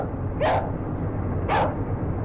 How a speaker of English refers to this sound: And if a person tried to sit in the same carriage, then Bob would be forced to try to scare away the person by barking continuously.